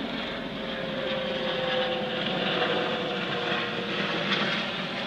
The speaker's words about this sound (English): So, there's a helicopter overhead.